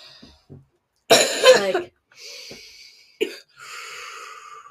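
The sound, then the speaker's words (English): A loud, harsh cough bursts out, followed a couple of seconds later by a shorter, lighter cough, with quiet breathy noise in between and no talking. “Or you can cough, you know, that way.”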